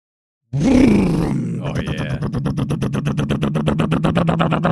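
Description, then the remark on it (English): A diesel engine, a machine called the BunkTech Bunker Alarm 3000, coughs to life with a rough, rising growl, then settles into a steady, fast chugging idle of even pulses over a low droning hum. “I think it's purring today, huh? Yeah, it sounds pretty good. A lot of diesel fumes.”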